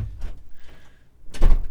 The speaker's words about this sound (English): Louder. Gotta slam that door louder, please.